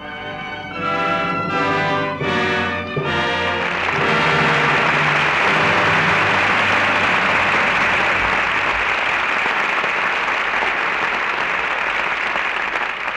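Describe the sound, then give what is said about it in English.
A few seconds of brassy closing music with short pauses gives way to loud, sustained audience applause, a dense and steady roar of clapping that continues to the end. The applause closes a radio play performance of Lydia. “Your applause rings down the curtain on Lydia, and some acting we won't soon forget.”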